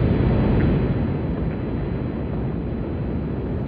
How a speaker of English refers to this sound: 10, 9, ignition sequence start. 6, 5, 4, 3, 2, 1, 0. All engine running. Liftoff. We have a liftoff. Liftoff on Apollo 11.